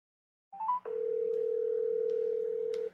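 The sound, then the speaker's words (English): A quick electronic chirp, then the steady ringing tone of an outgoing phone call to a friend holds for about two seconds before cutting off. The tone is clear, with no talking. “I'm just going to give him a call.”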